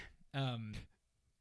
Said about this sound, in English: Excuse me. I had to clear my throat.